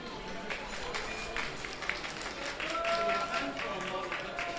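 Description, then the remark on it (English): About 40 to 50 artists at a drawing session applaud the clothed model on stage, a steady, dense patter of many hands clapping with voices mixed in, holding a fairly even loudness throughout. “And a round of the applause for the model, but most of the artists here seem very serious in taking the art for real.”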